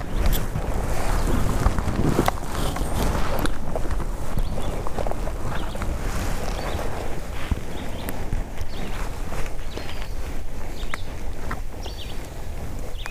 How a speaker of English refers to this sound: All the shuffling sound that you hear for the next few minutes and you've heard for the past several seconds, that's me scooting my rear end around so that my left shoulder is pointing more towards the